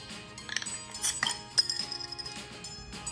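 Beer glasses clink together in a toast, several bright, ringing taps spread across a few seconds, moderately loud, with no voices.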